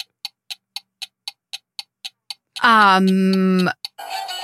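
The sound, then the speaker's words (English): A game timer ticks quickly and evenly during a round of naming movies set in space, about nine crisp ticks, then a loud, harsh buzzer blares for roughly a second before a brief noisy tail. “The clock has struck.”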